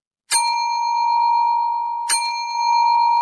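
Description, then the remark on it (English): Two bright electronic chimes, nearly two seconds apart, each striking sharply and then ringing on as a steady tone; loud and close, with no voices. They come from a woman's phone, held right above the listener's head as she leans on the back of the listener's chair. “And while that was going on, this woman was standing above my chair, like leaning on the back of my chair with her phone out.”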